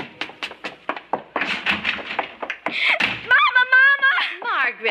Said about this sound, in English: haven't I told you not to slam the door?